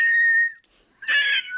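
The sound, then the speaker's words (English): A wheezing whistle from the chest: a thin, steady high-pitched tone for about half a second, a short pause, then a second, raspier and breathier wheeze. No one speaks. “That's the chest whistle.”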